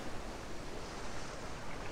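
A steady, hissing rush of ocean surf washing onto a beach, continuous with no distinct breaks between waves and no voices.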